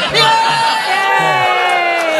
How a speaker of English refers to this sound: He admitted it. It's the only room you'll get a cheer in.